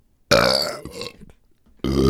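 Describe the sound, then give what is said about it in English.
A loud, deep burp rumbles out after chugging a beer, fades into a short pause, then a second strong burp starts right at the end. “cheers, we're gonna chug one beer and try to burp or pee.”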